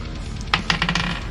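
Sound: dice being rolled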